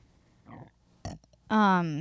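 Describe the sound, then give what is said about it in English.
A loud, throaty burp erupts near the end, a half-second voiced croak whose pitch sags then lifts, following a couple of softer short noises. “I've been burping this whole episode.”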